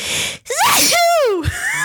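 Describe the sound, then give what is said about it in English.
A single loud sneeze with a sharp sucked-in breath before it and a breathy, rising-and-falling burst of the sneeze itself, trailing into a short exhale. “You're not even going to say bless you?”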